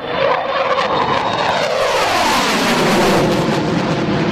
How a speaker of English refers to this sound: It's the end of an era for a staple of Australia's Air Force, with hundreds gathering at the Williamtown RAAF base to see the FA-18 Hornet fly into retirement with a final roar.